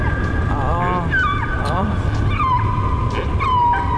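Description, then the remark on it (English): Whale calls, a series of sweeping, rising and falling tonal cries and whistles, overlapping over a steady low underwater rumble for several seconds at moderate loudness. “I have got an absolutely stunning Supernature for you this week involving these ones here. Those are the whales.”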